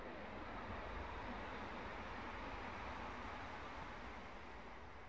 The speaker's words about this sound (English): There goes a train.